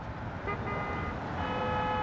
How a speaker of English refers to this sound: If you place yourself on any street in Manhattan, there's always this underlying whoosh of traffic, which if you are sensitive to sound, you'll probably pick up on pretty quickly.